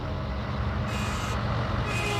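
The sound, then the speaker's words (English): Diesel truck traffic rumbles steadily through Laredo, the country's largest inland port, where about 16,000 diesel trucks pass daily: a dense low engine drone with a hissing upper layer that swells and fades a couple of times. No one speaks. “We get about 16,000 diesel trucks moving through here every day.”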